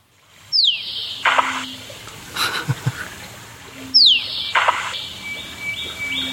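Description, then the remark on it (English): A musk duck's mating call with a splash as it kicks its feet out, heard twice a few seconds apart: a sharp sweeping note and watery burst with a low hollow tone, while other birds call faintly in the background. “Now, when it's in its mating thing, you'll hear that call with a splash when it kicks its feet out.”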